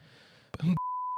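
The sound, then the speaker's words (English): A brief burst of noisy, throaty coughing is cut off by a steady, mid-pitched censor bleep that holds as a single sustained tone to the end. “I was coughing. I'm going to bleep it.”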